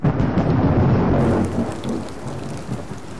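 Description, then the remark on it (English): Constant heavy rain on a festival day in Brewster, Ohio, pours down steadily in a dense, unbroken hiss, with a deep low rumble underneath; it is loud throughout, easing only slightly toward the end, and no one speaks. “The day of the festival arrives with a constant rain that lasts the entire day.”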